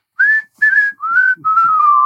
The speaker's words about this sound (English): I do like that these are all just like earworm whistling songs.